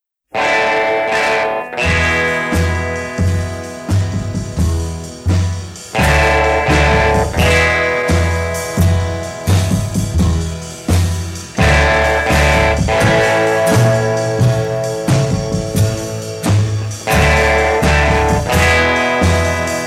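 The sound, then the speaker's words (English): A loud, gritty distorted electric guitar plays a slow, swaggering 1958 rock instrumental, heavy chords ringing out with tremolo and echo over a steady beat, no voices present. “he'd already been using distortion, but … was a really big hit”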